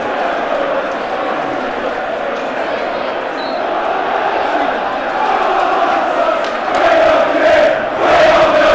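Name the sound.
football crowd cheering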